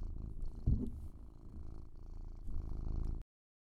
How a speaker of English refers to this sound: Hear that? Is the kitty getting picked up on the mic? I hope he is.